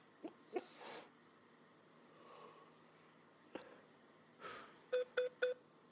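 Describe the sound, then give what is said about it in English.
Three short electronic beeps sound in quick, even succession near the end, following a few scattered soft rustles and clicks in an otherwise quiet stretch. “What is that beeping sound?”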